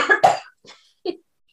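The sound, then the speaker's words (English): A loud sneeze bursts out in a quick double blast, followed by a few softer breathy sounds and sniffles. No talking is heard. “Bless you.”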